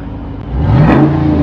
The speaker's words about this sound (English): It's got the active exhaust. There it is. There it is. Now give me a little punch.